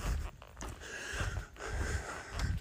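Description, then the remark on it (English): Heavy, labored breathing of someone walking up a big hill, a series of rough, rhythmic breaths with audible huffs and gasps. “If you hear me breathing heavy, it's because I'm hitting a big hill.”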